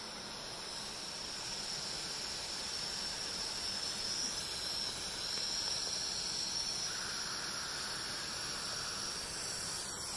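Snow runoff water is boiled to make it safe, coming to a boil with a steady, loud hiss of steam and a dense bubbling rumble underneath, continuous without any talking.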